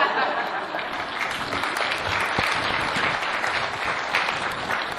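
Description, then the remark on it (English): An audience bursts into steady applause, a dense, even patter of many hands clapping at once that holds at a constant loud level throughout, with a faint chuckle or murmur mixed in. “I can't seem to deliver that in a way that makes people applaud, so applaud anyway.”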